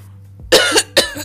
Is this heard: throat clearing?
yes